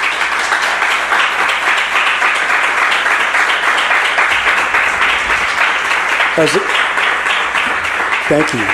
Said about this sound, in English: Let's give our cast a round of applause, please.